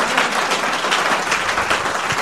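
An audience applauds steadily, many hands clapping at once in a dense, continuous patter that stays loud and even throughout, with no voices standing out.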